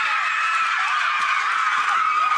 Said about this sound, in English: The crowd and her teammates went absolutely wild.